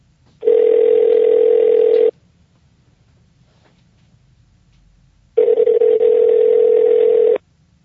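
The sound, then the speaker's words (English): A telephone line tone sounds in two long, steady buzzing bursts, each lasting nearly two seconds, separated by a few seconds of quiet with a faint low hum underneath, as a call is placed to a guest. “Let's get her on the phone now and talk to her directly.”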